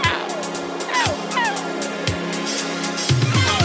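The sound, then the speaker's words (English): Seagull cries, short, high, downward-sliding squawks repeated several times, ride over a steady rushing wind, with a few low thumps of wind buffeting underneath. “Bro, if you're not here, wait, your wind in the background and some kind of a seagull noise.”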